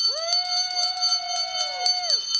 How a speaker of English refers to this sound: So let's ring the bell.